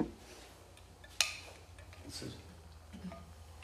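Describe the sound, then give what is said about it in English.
Someone takes a quick sip of a drink: a single sharp clink of a cup or glass, then faint, soft handling and swallowing sounds over low background hum, with no talking. “I'll just give a little sip.”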